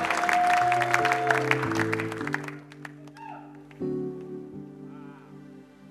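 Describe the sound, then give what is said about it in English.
An audience gives a clap of praise to Jesus, a dense, steady burst over sustained organ-like keyboard chords; the applause fades after a couple of seconds, leaving the held chords ringing on. “As we prepare to receive what God is about to do tonight, let's give Jesus another clap of praise to his name.”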